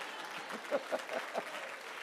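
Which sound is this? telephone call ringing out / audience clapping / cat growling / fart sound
audience clapping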